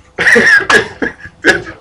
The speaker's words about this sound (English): No, everybody's coughing. Go ahead.